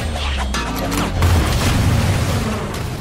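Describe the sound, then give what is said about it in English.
Loud explosions boom in quick succession, a few sharp blasts giving way to a heavy, continuous rumble and crackling debris that fills the whole stretch without pause. “Explosions.”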